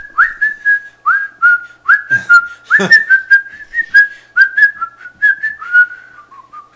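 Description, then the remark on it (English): A person whistles a wavering tune, a steady string of short, sliding notes, fairly loud, with a couple of sharp knocks partway through. “I can't whistle.”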